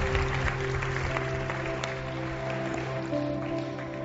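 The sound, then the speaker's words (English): An audience applauds steadily for about four seconds, a dense patter of clapping layered over sustained, held musical tones, with no one speaking. “I'll tell you right now, I know we can't do this, but how many in here, by a show of applause, believe God can do this?”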